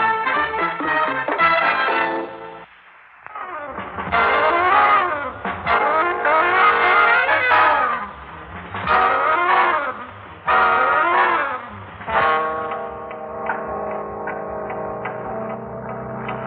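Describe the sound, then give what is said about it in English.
A car engine drives by, loud and steady, its pitch repeatedly rising and falling as it revs, with a brief dip in the noise early on and no voices. “I think there's a car behind us.”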